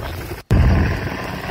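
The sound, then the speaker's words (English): A loud, low roar of a plane flying low overhead, played from a video, dense and rumbling, with a brief cut to silence before the heavy engine noise surges back and holds steady. “It's a video of a plane flying low.”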